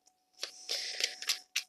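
Tarot cards being shuffled: a few quick papery riffles and flutters, crisp and fairly quiet, with brief pauses between bursts and no one speaking.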